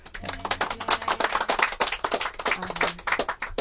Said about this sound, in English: Applause.